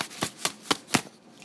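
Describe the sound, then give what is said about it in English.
Small notebook papers being shuffled and tapped into organized order, with four crisp, brushing bursts about a quarter second apart, fairly quiet, no talking. “Let me shuffle my papers and get them in organized order.”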